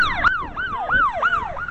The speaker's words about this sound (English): I hate it when radio shows put sirens on the air.